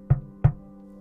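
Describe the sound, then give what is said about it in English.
Two firm, hollow knocks on a wooden door in quick succession, with no voices and only a faint steady hum in the background. “I got out of the car and fixed my suit once again before walking on over and knocking on the door.”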